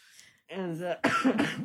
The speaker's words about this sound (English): I'm still like coughing like crazy.